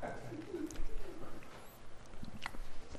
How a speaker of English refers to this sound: That's what we wanted. Those are eagles.